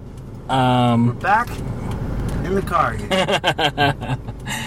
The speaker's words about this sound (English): We're back in the car.